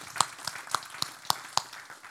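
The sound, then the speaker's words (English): A church audience at a service claps hands together in a steady, even rhythm, about eight sharp claps landing roughly four per second, fairly soft and with no talking over them. “Let's give God some hand clap.”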